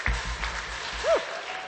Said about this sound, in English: I bet many of you have already participated in the Cane Quest. Clap your hands if you've been in the Cane Quest.